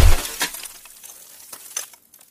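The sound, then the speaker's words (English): A boot stomps down on an ice-encased skull, landing with a low thud and a loud crunching shatter of ice, followed by a scatter of small tinkling shards settling and fading over a couple of seconds. “"I win," I said, as I brought my boot down on its skull, smashing it into more ice shards.”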